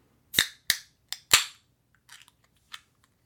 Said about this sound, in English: Yeah, I can just see as I open the can, this is a lot darker.